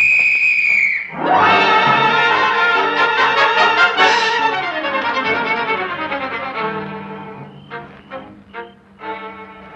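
A shrill police whistle gives a steady blast for about a second, then is swallowed by a loud, dense swell of tonal sound that gradually fades into scattered pulses.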